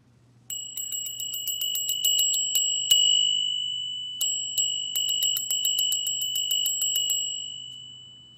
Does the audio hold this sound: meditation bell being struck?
yes